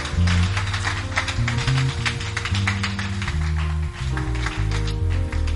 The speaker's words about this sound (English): Shall we clap our hands for the Lord? Applaudissons pour le Seigneur.